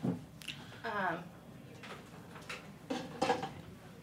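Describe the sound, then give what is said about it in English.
A cup is set out for a chicory-based drink with a few light clinks and knocks of crockery, scattered sharp taps over a low background, with brief murmured voices in between. “Let me grab you a cup.”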